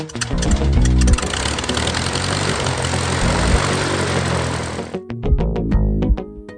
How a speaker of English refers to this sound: A little bit of background noise throughout the day, but it's just airplanes, so it's not really noise. Good background noise.